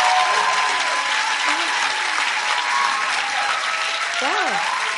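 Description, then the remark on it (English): Sustained audience applause after a testimony, a dense steady wash of many hands clapping, with faint voices and a brief whoop rising through the noise. “Well, I think you should clap one more time”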